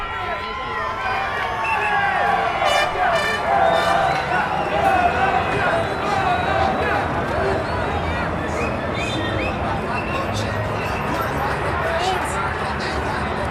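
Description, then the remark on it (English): Fans of cyclist Dani Martinez at the Giro d'Italia cheer and shout at news of his winning the Pedaleur de Charme poll, many voices overlapping in a loud, steady roar of excitement that holds for the whole stretch without pausing. “Some Dani Martinez fans there responding to the news that he has won our Pedaleur de Charme pole at the Giro d'Italia.”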